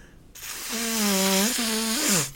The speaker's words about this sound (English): Let's blow our noses together. A symphony of terrible. Let me know when you're ready. Okay, I'm ready. Go.